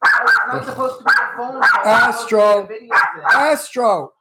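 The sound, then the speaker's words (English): A dog, Astro, barks at a window in a rapid, uneven series of about seven loud, high-pitched barks and yips, with brief gaps between them and no other sounds. “He's at the window barking.”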